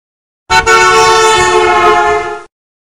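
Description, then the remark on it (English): A single loud, buzzy horn blast from a passing car, lasting about two seconds, rich in overtones, starting abruptly and cutting off cleanly, with its pitch holding mostly steady throughout. “In this example, the horn sound seems to be getting higher in pitch while it's approaching and then lowers while it's moving away.”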